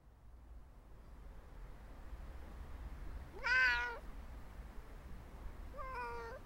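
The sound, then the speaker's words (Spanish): A female domestic cat in Tokyo, kept indoors with her owner for over four months, meows twice: a drawn-out mew followed a couple of seconds later by a second that cuts off at the end, both heard over a steady low background rumble. “Estamos en Tokio para hablar con una gata doméstica que lleva encerrada con su dueña más de 4 meses.”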